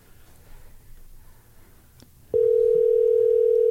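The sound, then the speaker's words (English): After a couple of seconds of near silence, a steady electronic telephone ringback tone switches on abruptly while placing a live phone call, and holds loud and unbroken to the end. No one speaks. “Two ringy dingies.”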